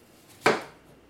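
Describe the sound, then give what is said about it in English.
A single crisp knife chop against a cutting board while apples are chopped for muffins in a home kitchen in Athens, fairly loud, with a brief ringing decay, surrounded by quiet kitchen room tone. “Daniel Palmer is in his kitchen, chopping apples, making the dough, and putting the muffins in the oven”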